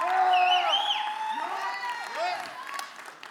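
audience cheering and yelling

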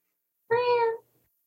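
cat meowing

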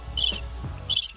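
crickets chirping sound effect

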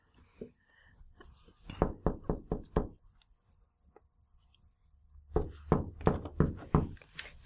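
knocking on a door

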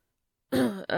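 throat clearing

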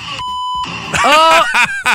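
censor bleep tone

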